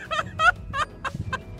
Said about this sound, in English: If you notice, and like as soon as the goose starts to charge, it just like puts his head all the way down. Yeah. And like. And just wings come out.